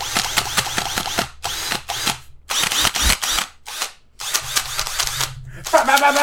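A brushed electric drill whirs in repeated short bursts, fairly loud, starting and stopping with brief pauses between runs and sharp clicking at the start.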